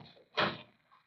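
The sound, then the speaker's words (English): A single brief scrape and clunk of a door being unlocked and swung open, with quiet background noise before and after and no voices. “I unlocked the door and opened it.”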